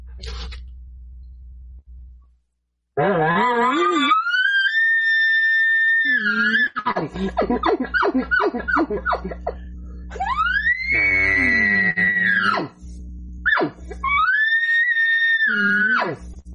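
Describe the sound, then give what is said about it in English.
Loud elk bugles blown on the new Grinder tube game call by Elk Bros: three high, shrill whistling squeals that rise and hold, broken up by rapid guttural chuckling grunts between them. “Why don't you welcome with some cranks out of that bugle tube, man?”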